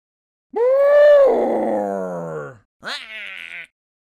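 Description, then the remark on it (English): A voice imitates an elephant's trumpet: a loud, two-second brassy blare that rises then sags in pitch, followed after a brief pause by a shorter, higher squealing blast. “Well, huffed Elephant, can you at least trumpet like an elephant? He took a deep breath, flapped his big ears, and...”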